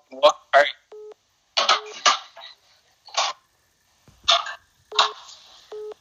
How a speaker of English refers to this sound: No, sorry, someone just called me there, it's called, I'm doing this on someone else's phone, so there's someone I calling the whole time, so I'll just let him out.